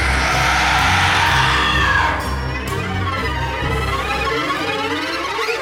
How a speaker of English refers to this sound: Give a sinister scream for your host